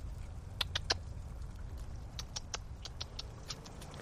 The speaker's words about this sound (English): Chipmunk.